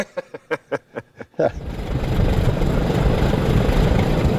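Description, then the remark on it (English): The four propeller engines of a B-29 bomber in Wichita crank over with a series of slow, chugging coughs, then catch and swell into a loud, steady, rumbling roar that continues. No one speaks. “So what does it feel like when you're in there and you start up all four of these engines?”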